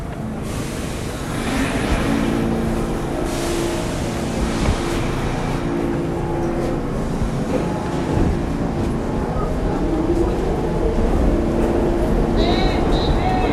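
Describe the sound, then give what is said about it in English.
A subway train rumbles loudly and steadily throughout, with a droning motor whine layered over the roar and a brief high metallic squeal near the end. “Are you Shazamming the subway right now?”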